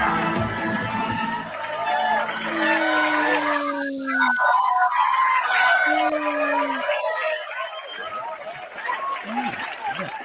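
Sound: crowd cheering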